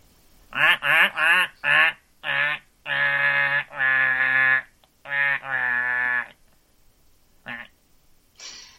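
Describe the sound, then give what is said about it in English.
Loud, nasal duck-like quacks, four quick ones followed by longer drawn-out calls that sag downward in pitch like a sad trombone, then a couple of faint short bursts. “Duck sad trombone.”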